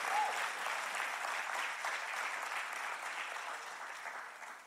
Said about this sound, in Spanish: Amén, ahí se aplauda duro.